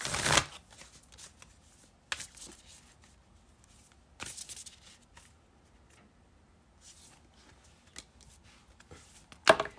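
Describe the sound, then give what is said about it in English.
Oracle cards from a moon deck being shuffled to pull two cards, with sharp riffling bursts at the start and end and softer intermittent shuffles and taps in between, fairly quiet with no talking. “We're going to start off with the moon deck and pull 2 for you.”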